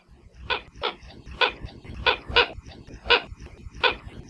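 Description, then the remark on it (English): Calls of the Hawaiian coot (ʻalae keʻokeʻo), an endangered water bird endemic to Hawaii, recording from the Cornell Lab of Ornithology library: about seven short, harsh, barking notes repeated at a steady pace, each a sharp burst of fairly loud sound with brief gaps between, and no voices. “ʻAlae keʻokeʻo, or Hawaiian coots, are water birds that are found on all the main Hawaiian islands except Kahoʻolawe, and are endemic to Hawaii, meaning that they're found nowhere else in the world.”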